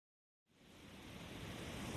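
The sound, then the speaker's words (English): Ocean waves at the beach rise out of silence into a steady, broad wash of surf noise that swells gradually louder and stays continuous, with no voices. “I recorded the sound of the ocean at the beach a few weeks ago when we were evacuated for the fire.”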